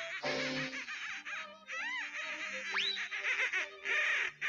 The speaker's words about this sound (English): Nope, duck.